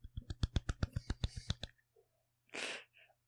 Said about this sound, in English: What are you patting? I was clapping you for getting the right details. Oh, I thought you were like patting your phone. No. Your clapping doesn't sound very loud in my head. No, I was deliberately being quiet